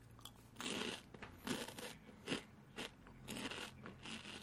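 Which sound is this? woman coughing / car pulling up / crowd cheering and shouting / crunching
crunching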